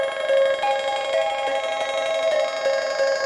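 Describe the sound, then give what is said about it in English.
A sustained synthesizer drone washed in the Pico DSP reverb: a bright, buzzy tone rich in overtones holds at a steady loudness, its pitch stepping slightly now and then, with no voices. “So that's just the Pico DSP reverb.”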